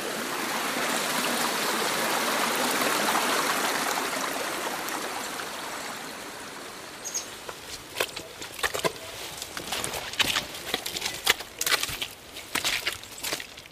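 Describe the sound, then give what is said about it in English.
A steady rush of flowing water gives way to irregular wet squelches of boots tramping through mud while walking up a hill trail on Anchor Island after 52 mm of overnight rain, a quick uneven series of sucking steps over a faint watery background. “Typical sound of Anchor Island is the squelching of your boots.”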